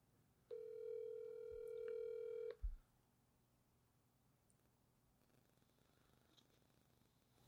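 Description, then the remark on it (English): A phone line's ringback tone sounds once, a steady electronic hum lasting about two seconds, followed by a brief low thump and then near silence. No one speaks. “We need to call him because I do have some questions.”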